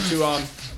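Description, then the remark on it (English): A single quick sneeze, a short voiced burst with a breathy, hissing edge that tails off in under a second. No one speaks. “Bless you.”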